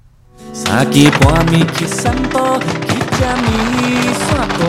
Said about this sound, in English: Pink and blue fireworks light up the sky. The 2022 Dadaocheng Chinese Valentine's Festival will take over the streets of the historic district this Saturday. The 8-minute fireworks show can be viewed from gates 3 to 5 at Yanping Riverside Park.